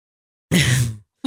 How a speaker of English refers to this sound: Oh, I can't stop yawning. I'm fucking tired.